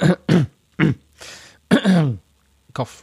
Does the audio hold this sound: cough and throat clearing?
yes